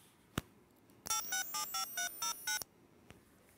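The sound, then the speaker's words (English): A quick, evenly paced run of about seven touch-tone dialing beeps encoding a phone number, clear and fairly loud, bracketed by faint clicks before and after, with no voices. “And I can confirm that'll actually dial a phone.”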